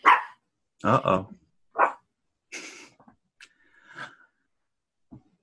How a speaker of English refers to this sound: This little dog over here is very excited as well.